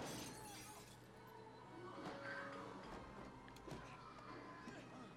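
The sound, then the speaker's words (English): Glass shatters and breaks in a dense, busy crash of tinkling shards and thuds lasting several seconds, with scattered sharp impacts over a steady, cluttered background of a film fight scene. “No safety glass in those days either.”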